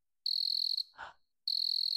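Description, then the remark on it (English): A cricket chirps in a loud, steady, high-pitched trill, breaks off briefly for a soft muffled thump, then resumes just as strongly. No one speaks. “And why is there a cricket sound all of a sudden here?”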